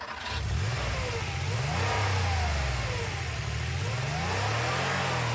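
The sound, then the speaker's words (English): A bus's heavy engine revs up and accelerates, its pitch sweeping upward and dipping in repeated waves, loud, with a steady rumbling drone throughout and no voices. “you get to drive the bus.”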